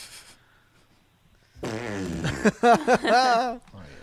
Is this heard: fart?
yes